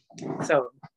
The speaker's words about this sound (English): You might hear my dog in the background. That's my firstborn child, as I put it.